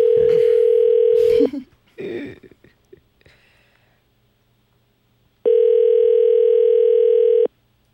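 A phone line ringing back while waiting for someone's mother to answer: two long, steady electronic buzzing tones, each about two seconds, separated by a gap with a few brief rustles and murmurs.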